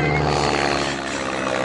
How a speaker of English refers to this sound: Why is that plane keep following us?